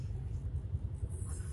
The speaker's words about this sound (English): The bus has stopped right in the middle of the road. Bus distracted me.